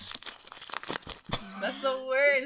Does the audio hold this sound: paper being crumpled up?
yes